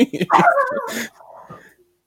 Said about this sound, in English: We got dogs barking at the Hooper household.